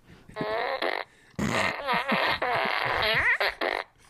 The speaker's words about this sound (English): Someone mailed me a fart gun. And it's the best. Check this out. It has like 1,000, like I still haven't heard a repeat fart, I think. But it looks like a ray gun, and it just shoots fart noises, and it's my favorite thing ever now.